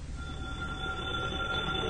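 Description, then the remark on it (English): A steady, ringing tone with bright, high overtones holds for about two seconds over a low background rumble, like an old telephone bell ringing continuously. No one speaks. “Oh, that phone would ring just as I get settled down.”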